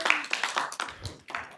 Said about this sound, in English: You know what? Give yourselves a round of applause. Clap for yourselves. You did a great job.